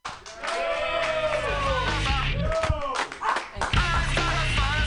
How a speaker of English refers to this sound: Everybody, this next comedian is a very funny lady. People, start applauding right now